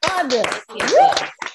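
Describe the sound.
An audience applauds in a steady wash of clapping, with voices cheering and calling out over it, and a brief burst of claps trailing off at the end.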